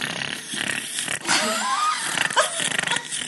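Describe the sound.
A woman loudly imitates her own snoring while sleeping, with rough, rasping snorts and wheezy breaths repeating in quick succession.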